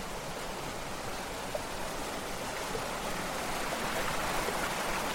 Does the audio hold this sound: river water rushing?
yes